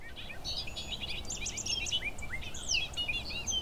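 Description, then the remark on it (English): A bobolink's bubbling, tumbling song pours out in a rapid jumble of high, metallic, varied notes, running continuously over a low, steady background rumble. “No bird sounds quite like the bobolink.”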